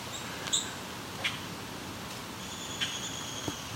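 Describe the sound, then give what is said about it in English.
A common grackle gives a few short, sharp squeaky calls, spaced irregularly, over a low outdoor rumble. The calls are fairly faint, with a thin high whistle joining near the end. “This is a grackle calling.”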